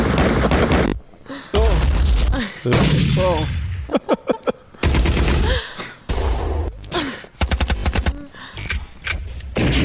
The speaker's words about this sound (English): No, can you play more gun sound effects?